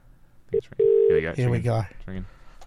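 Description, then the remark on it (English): A phone line's ringing tone after a number is dialed: a short electronic beep, then a longer steady tone, followed by people talking as the tone fades under their voices. “So this should be dialing. Is it ringing, mate? It's ringing.”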